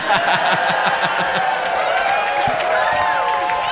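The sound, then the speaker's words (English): A live audience cheers and shouts together in a steady, dense roar, with rhythmic claps pulsing through the first second and a half and higher whoops rising above the din. “Listen to them cheering minutes after saying stoner comedies were like stupid and bad.”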